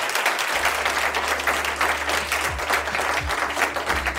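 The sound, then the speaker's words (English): Sustained applause for debaters from a live audience at the Council on Foreign Relations, a dense, steady wash of clapping at constant loudness for the whole stretch, with a low hum underneath and no voices. “So please, a round of applause to them.”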